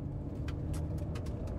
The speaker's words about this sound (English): They step out the door, and all of a sudden outside, a set of car lights go on, and they drive off.